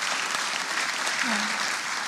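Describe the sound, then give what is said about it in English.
A crowd claps steadily in celebration of the resurrection of Jesus Christ, a dense, even wash of applause with a brief voice rising faintly in the middle, sustained at the same loudness throughout. “You should all be clapping right now.”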